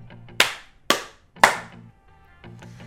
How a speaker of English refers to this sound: Clap thrice.